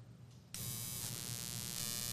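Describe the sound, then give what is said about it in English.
A plugged-in electric stimulation device, placed flush against the skin on a person's hip, switches on abruptly after a short quiet moment. It drones evenly at a loud level, with a bright, harsh high-pitched hum layered over a low vibrating tone. “Is that electrocuting you right now?”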